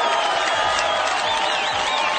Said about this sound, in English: Obviously, Jimmy got the W that night, so let's get that man applause on that. Get that man applause.